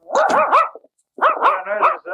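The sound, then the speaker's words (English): A dog, a mixed-breed pup named Mabel, barks in two quick bursts of loud, yappy, mid-pitched barks, three or four in each run, with a short silent pause between them. No one speaks. “I don't see why you want to call that dog Mabel.”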